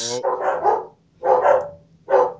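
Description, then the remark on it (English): A dog barks three times in quick succession, loud, with short pauses between the full, throaty barks. “Your dog does not like Frozen. Your dog hates Frozen.”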